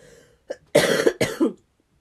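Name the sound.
coughing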